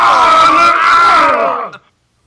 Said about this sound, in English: With some screams of pain. Are you happy with that? Was that the dear Mr. McCarthy getting his head stoved in? I think the sound file probably included more voices than two. More victims than one, but yeah.